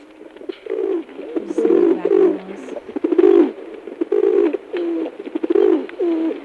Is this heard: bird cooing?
yes